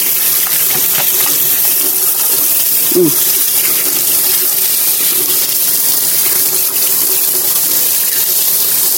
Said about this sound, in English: I'm going to wash my hands.